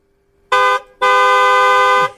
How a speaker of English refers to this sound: That just sounded like the second horn was maybe a little louder.